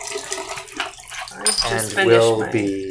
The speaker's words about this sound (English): I have 10 seconds left to go on mine, on yours, I guess. Yeah. So I'm pouring out.